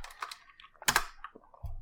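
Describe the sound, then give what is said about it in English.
A short burst of typing the word "roll" on a computer keyboard to roll dice in a tabletop game: several quick clicks with one louder clattering strike in the middle, then a low rumble at the end. “Type out the word roll.”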